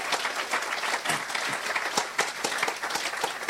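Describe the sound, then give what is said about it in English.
A crowd applauds the new Assemblies of God national church planting director, many hands clapping in a dense, continuous patter at an even loudness for the whole stretch, with no voices rising above it. “He will be the Assemblies of God Church's national church planting director, which is fantastic and I think worthy of a round of applause.”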